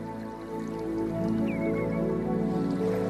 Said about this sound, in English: This is some music by Danish composer Niels I. How does it make you feel? Relaxed? Less anxious? Maybe the water sort of has an effect